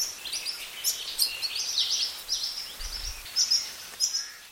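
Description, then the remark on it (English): Insistent, high-pitched chirps from Hawaii creeper fledglings begging for food as they follow their parents around the forest while learning to forage, repeating in quick bursts and overlapping one another, moderately loud with no one speaking. “For the next few months, these keiki noisily follow their parents around the forest begging for food as they are learning to better forage for themselves.”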